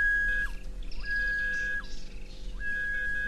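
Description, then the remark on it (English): An H-Stamets detector, which combines ground-penetrating radar with metal detection, is demonstrated: the metal detector emits a steady, high electronic tone that cuts out with a quick downward swoop three times before resuming, with fainter warbling tones above and a constant low hum beneath. “And you're going to hear the metal detector, which I will demonstrate for you now.”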